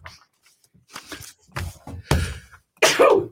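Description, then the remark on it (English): A loud sneeze bursts out at the end, following a few shorter breathy, scuffling sounds, with no talking. “Bless you.”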